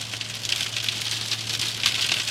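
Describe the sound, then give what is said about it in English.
Heavy rain pours steadily outside, a dense hiss of countless small droplets pattering without pause, with a low electrical hum underneath and no voices. “Raining like hell.”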